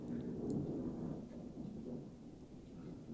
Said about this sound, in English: That is thunder, isn't it? I think that's a jet. Oh, it could be a jet. Going to the airbase. Yeah, they've been flying over. Yeah, the fighter jets have been doing maneuvers. They get really low over the sea.